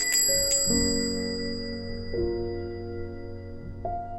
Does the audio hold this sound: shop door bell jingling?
yes